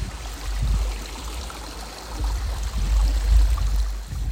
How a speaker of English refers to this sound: And there's sort of two waterfalls side by side and then a lower waterfall down at the bottom. And this is what they sound like.